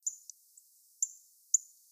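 Sharp, high metallic chirps from a northern cardinal, three clear notes spaced roughly half a second apart with a couple of softer ticks between, alone with no talking.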